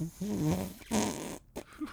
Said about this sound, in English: A wicked fart.